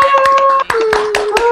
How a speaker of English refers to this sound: And we can have a last round of applause for all the performers.